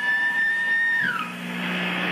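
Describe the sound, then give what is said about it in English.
A loud, steady high-pitched fire warning siren and master alarm tone, sounded during a test of a caution warning system, plays alone, then bends downward after about a second and gives way to a broad, rushing hiss. “You can hear a loud siren, a master alarm, and some warning lights come on.”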